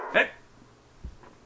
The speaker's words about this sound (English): He's going to be barking from there.